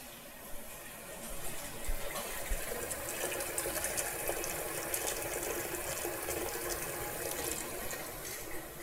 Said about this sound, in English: But to begin with, I'm just gonna boil up some pasta. So let me just fill this big pot that I have here with some water.